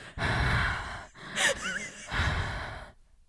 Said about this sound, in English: But yeah, you guys, today, dude, can you stop breathing so loud? Wait, was I breathing loud? Was I actually breathing loud? Was I actually? Yeah, I can literally hear your breathing. Freaking mouth breathers. Am I breathing loud?